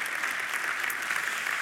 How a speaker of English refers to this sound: Yeah, you can clap. There you go. Perfect.